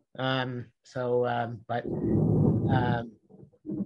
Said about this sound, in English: It's thundering here in the background. I don't know if you have that in New Jersey, but that was a peal of thunder.